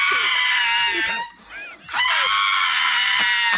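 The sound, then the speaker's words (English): A small pug dog lets out loud, shrill, sustained screams, two long bursts separated by a brief pause, with no talking over them. “I love this dog that screams.”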